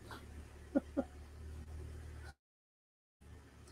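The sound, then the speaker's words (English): A 1,000-horsepower Trackhawk SUV engine rumbles low and steady as it backs out, with two brief bumps of sound early on before the audio drops out abruptly. “Anyway, he's backing out his 1,000 horsepower Trackhawk.”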